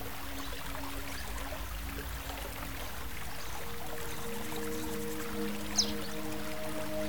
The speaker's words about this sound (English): But look at the overall creek. It adapts, it flows, it finds a way.